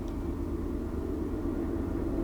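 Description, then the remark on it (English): A train rolls past with a steady, heavy low rumble that holds at constant loudness throughout, with no voices and no clear whistle standing out. “And maybe a little train lore as well, as the train comes whistling by.”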